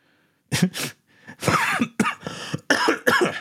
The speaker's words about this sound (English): Hey, the cough of the day is down, though.